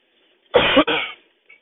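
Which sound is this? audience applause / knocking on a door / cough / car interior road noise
cough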